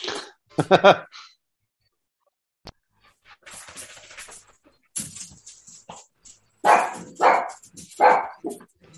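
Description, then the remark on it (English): A 10-pound miniature dachshund named Toby barks in sharp, high-pitched bursts, a quick double yap early on, then several more loud yaps later, with some softer rustling and movement noise in between. “It's like a fucking 10-pound miniature dachshund.”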